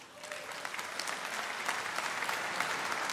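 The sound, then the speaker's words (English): An audience applauds steadily, a dense patter of many hands clapping at once, holding a fairly even, moderate loudness throughout with no voices standing out. “I honestly don't know if you're clapping because it's a short sermon or because there's going to be baptisms.”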